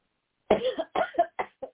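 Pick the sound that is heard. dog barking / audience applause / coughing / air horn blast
coughing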